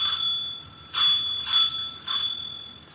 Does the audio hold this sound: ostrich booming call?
no